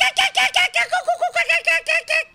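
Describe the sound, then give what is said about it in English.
Noni Hazelhurst imitates a kookaburra's laughing call on Joy 94.9 community radio in Melbourne, Australia: a rapid, rhythmic run of about a dozen loud, harmonic hoots lasting a couple of seconds, unaccompanied by talk. “Noni Hazelhurst, top bird and a kookaburra.”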